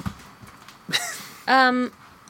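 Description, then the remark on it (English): A single short cough rings out, followed by a loud, strained vocal noise held for about half a second, with no words spoken. “Coughing and doing weird stuff.”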